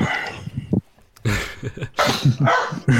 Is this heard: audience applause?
no